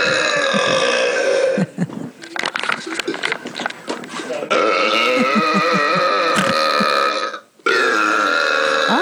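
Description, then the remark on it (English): Two long, loud, croaking burps follow one another with a brief break between them, each rough and resonant with a gravelly rattle, heard on their own. “Yeah, there's this lovely burper actually did had a friend here and went for a double no. burp.”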